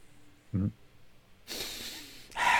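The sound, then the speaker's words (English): A brief low snort, then after a pause a long, forceful breath drawn through the nose followed by a second loud nasal breath, with no talking. “Is there a frequency to breathing?”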